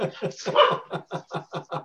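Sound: dogs barking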